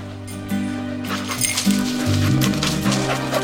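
A search dog, being run to look for human remains, barks and whimpers in short bursts against a steady, droning tonal background, with the yelps rising and falling over a few seconds at moderate loudness.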